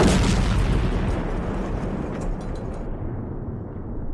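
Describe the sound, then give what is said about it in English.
A loud, roaring burst of flames, a dense rumbling blast that fills the whole stretch, its hissing upper edge dying away toward the end while the deep roar carries on. No voices. “And with the explosion of flames came the explosion of blames.”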